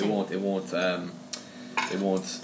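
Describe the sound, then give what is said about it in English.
Falafels being flipped in a frying pan: a few sharp metallic clinks and scrapes of a utensil against the pan, under steady talking. “It won't mask any of the flavors in the frying pan. So if you give one flip there, you see where it's getting a nice brown color.”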